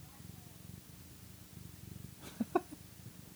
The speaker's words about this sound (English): He rubbed all over the microphone, so now I have kitty spit on my microphone. Nice. And he purred.